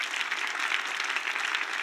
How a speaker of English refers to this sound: Come on, give God a big clap.